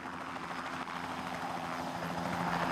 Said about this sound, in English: The key to making lift is getting air to flow over an aerofoil. In a helicopter, you do it by spinning the rotor blades.